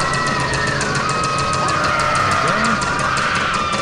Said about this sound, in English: The same screams every time, so.